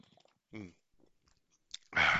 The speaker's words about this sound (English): Switch over to this stuff. It's really good, all natural, zero calories, zero sugar, Zevia. Absolutely amazing. I'm gonna have a little quick sip here.